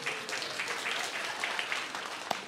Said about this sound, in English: Give a round of applause to Chloe.